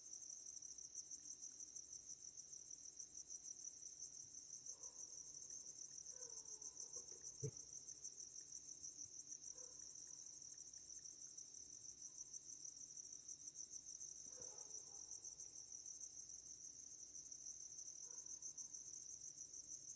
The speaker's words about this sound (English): Okay, so hope you're enjoying the crickets.